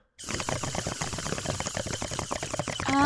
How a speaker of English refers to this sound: What's that noise? Sorry. I'm just getting the last sip of my boba tea here.